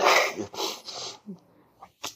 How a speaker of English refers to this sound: I think I sneeze. That's you! Sorry.